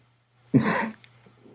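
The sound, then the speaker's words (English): A single harsh cough bursts out loudly for about half a second, then fades into near silence with only faint background noise. “Sorry, I was having a coughing fit or I would have laughed at that.”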